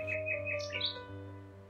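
A nightingale sings a quick run of four repeated chirps, then a brighter rising flourish, heard fairly clearly over a low, steady background hum with no voices.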